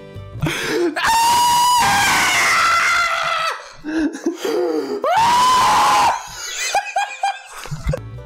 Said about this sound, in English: Sonata, put in that famous … scream. Yeah, and if you don't know which one, I'll help you find it, Sonata.